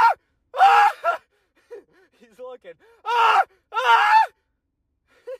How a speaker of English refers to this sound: I'm going to scream. So this might be loud, but I want to know if Hudson's going to be able to hear this.